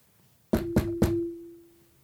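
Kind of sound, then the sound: household object, knocking on a door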